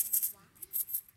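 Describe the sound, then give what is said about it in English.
Ancient gold coins jingle inside a bag on a stage in several short, bright bursts of metallic clinking, fairly quiet, as if the bag is being shaken or shifted. “In this bag, I have about $10,000 worth of ancient gold coins.”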